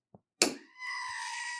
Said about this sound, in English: This week's screaming goat. The goat.